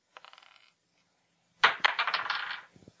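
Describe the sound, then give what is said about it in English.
Twenty-sided dice, including a spin-down die, clatter and roll across a hard table: a light rattle first, then a brief pause before a louder burst of tumbling clicks that quickly settle to stillness. No one speaks. “So we're just going to roll 20-sided dice.”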